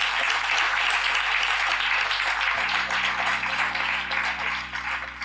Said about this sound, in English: So give yourselves a round of applause. You guys have been really good.